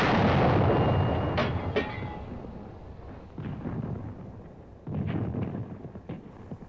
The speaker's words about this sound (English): Artillery.